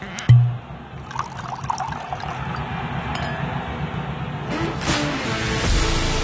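Wine is poured into a glass up close, a steady gurgling trickle that brightens toward the end as the glass fills, with a short knock at the very start.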